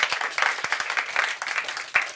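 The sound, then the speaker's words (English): A short burst of audience applause for the drummer, Billy, many hands clapping in a dense, steady patter with a few sharper claps standing out, moderately loud and without any voices. “Give him a hand of applause.”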